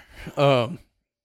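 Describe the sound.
A single loud, voiced yawn: a drawn-out open vowel that swells, then slides down in pitch and trails off, with silence after.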